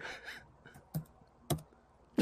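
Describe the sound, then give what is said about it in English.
Computer keyboard typing while logging in to Reddit: a few soft clicks followed by three sharper, louder keystrokes spaced about half a second apart, with no voices. “Always say what you're typing.”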